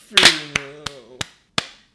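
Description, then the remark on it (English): Sharp hand claps on a count of one, two, three: a loud double clap opens, then single claps follow at uneven intervals, about once every third of a second. A voice talks in a sing-song tone between the early claps. “One, two, three, clap.”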